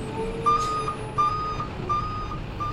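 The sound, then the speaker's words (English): A truck reversing past cars, its backup alarm beeping steadily in repeated high tones, about three evenly spaced beeps over a low engine rumble, outdoors with no one speaking. “That truck is not going to make it past those cars.”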